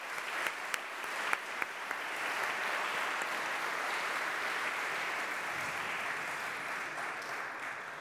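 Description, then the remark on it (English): A crowd at Samford applauds steadily for several seconds for student leaders, a dense, even wash of clapping with a few sharper individual claps near the start, staying loud throughout with no talking. “Please join me in a round of applause for all of these student leaders.”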